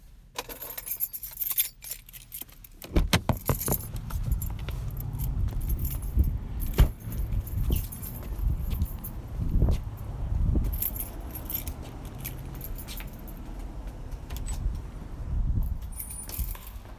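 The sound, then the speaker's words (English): Keys jingle and rattle repeatedly, a key found inside a post office box, with metallic clinks over a low rumbling background like an idling car or traffic, and no one speaking. “It's a key inside the post office box.”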